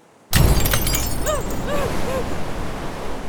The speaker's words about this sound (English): Maggie's window exploded inward, peppering the side of her face and head with glass.